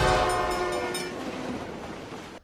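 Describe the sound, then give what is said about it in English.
A loud train horn blares over the heavy rumble of a passing train, the horn's tone fading as the rolling rail noise carries on. No voices. “They were playing it fast and loose on these train tracks.”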